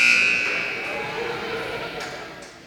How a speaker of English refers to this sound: that buzzer went in through the microphones and exited my ears in a blood wave